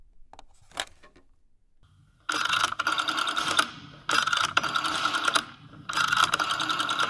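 A telephone being picked up and dialed to call the operator for the police: a few light clicks, then three rattling, whirring bursts of a rotary dial spinning back, each about a second and a half long. No one speaks.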